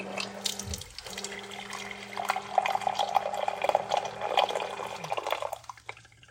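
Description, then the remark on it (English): Hot water pours steadily into a glass measuring cup for several seconds, a bright splashing rush with a rising fill tone, then tapers off as the flow stops; fairly loud, no voices. The water is being measured for a cocoa powder recipe. “All right, in with the water.”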